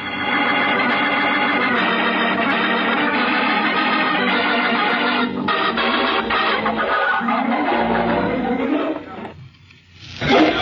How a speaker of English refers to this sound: Look up there at that dot in the sky. Great Jupiter, it's the killer ship coming in to attack.